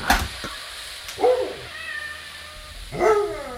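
A cat meows twice, fairly loud, with a pause of about a second and a half between the two rising-and-falling calls. No one speaks.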